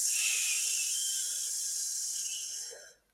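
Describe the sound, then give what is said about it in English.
A long, steady hissing exhale through the teeth with soft lips, an 'S breathing' relaxation exercise, like a drawn-out "sss," holding an even bright tone for about three seconds before fading out quickly. “So believe it or not, this S breathing really helps calm the nervous system and take you deeper into the parasympathetic state.”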